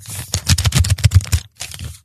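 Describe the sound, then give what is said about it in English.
Paper bills crinkle and rustle in a dense run of crisp, irregular crackles, pausing briefly before a final shorter burst of handling. No one speaks. “That's not paper, baby.”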